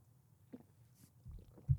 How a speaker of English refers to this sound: Two swallows is never a good sign for a shot. Ah, that means there was a lot in there. We will be slurring our speech later. kudos to Jim Beam for making Jim Beam fire, which is probably the best of all the fire.